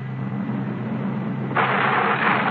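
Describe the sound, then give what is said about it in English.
A steady, heavy rumble of thunder fills the whole stretch, deep and continuous, then swells into a louder, rougher roar partway through. No one speaks. “It is the thunder from the Nile.”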